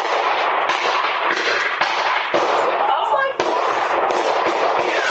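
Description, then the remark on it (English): A series of sharp gunshots from a gun battle cracks out at irregular intervals, roughly six or seven, heard through a steady wash of loud outdoor noise, recorded by a Ring doorbell camera as two bystanders flee. “A Ring camera captured the chilling sound of gunfire and two bystanders fleeing for their lives.”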